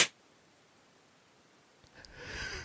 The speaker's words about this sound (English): I heard the sniffle, though.